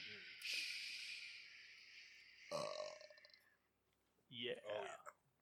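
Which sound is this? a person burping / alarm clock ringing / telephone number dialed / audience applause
a person burping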